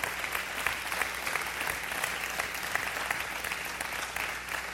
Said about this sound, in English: That's beautiful. You can clap for that.